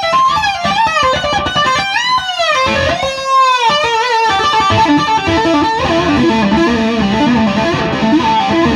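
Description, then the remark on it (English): A loud, distorted electric guitar plays fast, fluid legato runs using two-hand tapping with the right hand, tapping the 20th fret and bending notes up, with sweeping pitch bends and notes flowing rapidly in a continuous cascade, no voices present. “You can then echo that. With your right hand, yeah. Exactly. Oh, yes you can, sir. So your tapping hand.”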